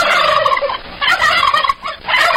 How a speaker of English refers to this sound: There, you happy? I got you turkeys, all right? You didn't like the ducks quacking. I got you some turkeys.